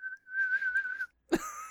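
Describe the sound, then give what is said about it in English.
A man whistles a tune, holding one high pitch steadily for about a second. He breaks briefly, then resumes with a sharp attack and wavering tone. The whistle is clear, with no talking. “And then I hear the whistling again, but it's from the side entrance.”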